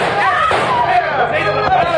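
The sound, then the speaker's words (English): Two sharp gunshots crack out about a second apart in the radio crime drama Stand By for Crime, heard amid a busy backdrop of excited voices talking over one another. “Don't shoot again, senor.”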